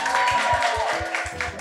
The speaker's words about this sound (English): Folks, thank you very much for joining us. Keep those claps coming. We want to record them.